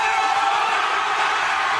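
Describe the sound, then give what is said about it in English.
A high school football game crowd cheers loudly after a police officer holds up a sign reading "Cheer or go to jail", a dense, steady roar of many voices with scattered whoops and yells that holds at full volume throughout the short clip. “He then holds up a sign that reads, "Cheer or go to jail."”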